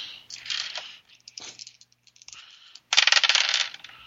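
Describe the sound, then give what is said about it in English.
Dice, a spirit die and a D6, clatter and rattle across a hard tabletop during a game in two bursts, a first tumbling roll followed by a brief lull with a few light ticks, then a louder second roll of bright clicks as a reroll. “I'm gonna spend one of my bennies to reroll because I got threes.”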